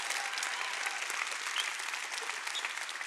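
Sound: audience clapping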